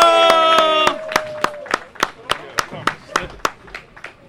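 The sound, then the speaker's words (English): Steady, rhythmic clapping for a guest arriving on a show rings out in even beats after a brief burst of sustained musical tones, the claps sharp, fading slightly toward the end with no voices over them. “Everybody give a big round of applause for my boy Robin Santiago.”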